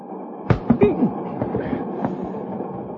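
A moving train rumbles steadily, with a quick cluster of sharp clickety-clack wheel knocks on the rails early on, then a fainter, continuous rolling rattle.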